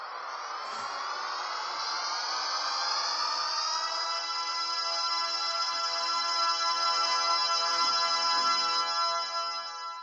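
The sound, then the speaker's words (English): The THX theme played as a phone ringtone: many synthesizer tones glide and swell together, then settle into a loud, sustained deep chord that holds for several seconds with no talking. “So, anyway, now I have the THX theme. Can we play that?”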